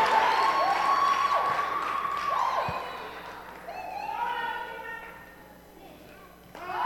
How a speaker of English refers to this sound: Let's put our hands together even as we welcome her.